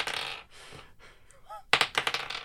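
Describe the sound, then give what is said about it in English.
Seven six-sided dice rattle as they are shaken, then clatter onto a hard surface in a quick burst of overlapping clicks and bounces, fairly loud. “Please roll 7d6.”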